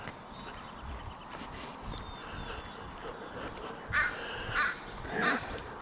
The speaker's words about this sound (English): Yeah. It is quiet on 185th Street. Well, it's a holiday. That crow's making noise, but that's about it.